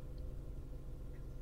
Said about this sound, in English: Dad opens the door, sits in the driver's seat, and starts the car. All I can hear is the car engine singing.